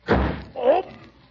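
door slammed shut

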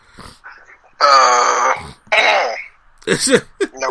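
throat clearing

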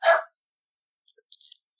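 dog barking

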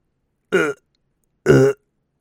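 burp

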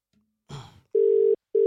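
whatsApp call ringing tone

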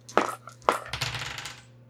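dice being rolled

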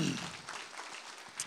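audience hand clapping

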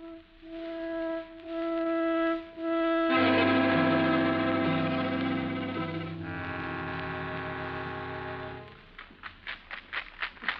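cocktail shaker being shaken

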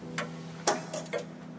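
grandfather clock ticking

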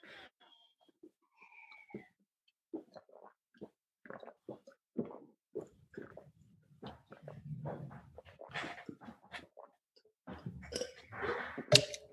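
chugging beer

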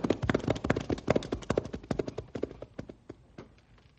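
horses' hooves clip-clopping

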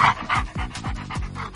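dog panting

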